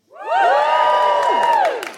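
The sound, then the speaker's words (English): A crowd lets out a loud, sustained cheer with high whoops and shouts, rising quickly, holding for about a second and a half, then tapering off. It is an audience at a Valentine's Day show, cheering when asked to cheer if they are in love. “Okay, give us a cheer if you are, and I don't really know how to put this, in love.”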